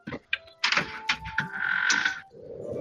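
A door opens with a few sharp clunks followed by a steady mechanical whirring hiss, then a low rumble as it settles; fairly loud, with no talking.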